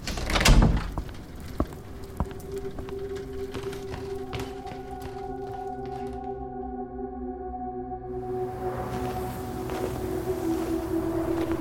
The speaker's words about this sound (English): I'll be back soon. I'm gonna lock the bedroom door.